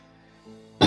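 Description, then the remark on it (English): A stretch of quiet gives way to one abrupt, loud, breathy sneeze burst at the very end, sharp and explosive, cut short as it erupts. “Bless you.”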